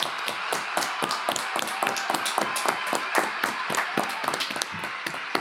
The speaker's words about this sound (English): Nah, keep clapping. Keep clapping?